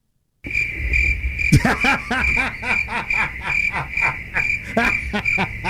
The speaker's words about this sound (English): Those are some loud ass crickets.